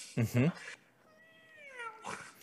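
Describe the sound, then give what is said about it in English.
A young girl imitates a cat, with two short, loud vocal bursts followed by a long, wavering meow that slides downward in pitch. “Do you have like a demon cat in your house? No, that's my daughter.”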